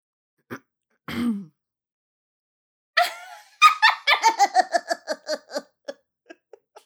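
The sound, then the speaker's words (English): After a couple of short throat sounds, a person imitates an evil toddler laugh: a high cackle of rapid staccato bursts that slowly fades to a few soft final pulses. “But I also have an evil toddler laugh that I used to do.”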